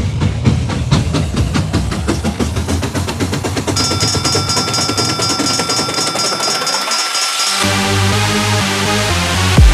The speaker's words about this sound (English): Then this train's about ready to move.